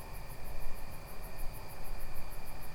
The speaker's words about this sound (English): We're sitting in an outdoor chapel. It's mm-hmm. nighttime now. We're listening to crickets and I think cicadas around us.